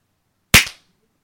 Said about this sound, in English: Now I'm going to turn the tables on you and ask you to give me a clap. Okay, 1, 2, 3.